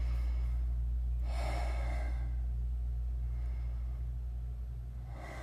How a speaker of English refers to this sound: Begin by taking 3 deep, heavy breaths.